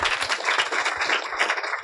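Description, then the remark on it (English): A crowd at a Politics and Prose book event claps steadily for a man who helped edit the book, a dense wash of many hands beating with no pauses, fairly loud and even throughout, with no voices on top. “So, seriously, give him a round of applause again, please.”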